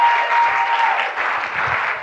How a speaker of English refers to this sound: Give the Lord a mighty clap of it.